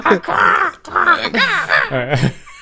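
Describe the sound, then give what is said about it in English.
A bird clock chimes with a recorded bird call: several loud, drawn-out, wavering calls in quick succession, clear over about three seconds. “So, bird clock, thank you.”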